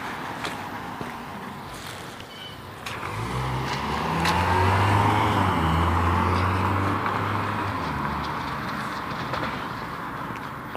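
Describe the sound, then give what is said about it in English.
A car approaches and passes by in Greeley at about 39 degrees, its engine and tire noise swelling to a broad rumble midway before fading off, with a steady outdoor wash of traffic and wind around it. “Wait for this car to go by.”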